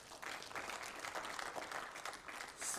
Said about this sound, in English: Let's give a hand clap to the Lord.